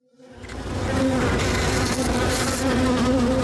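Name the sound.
honeybees buzzing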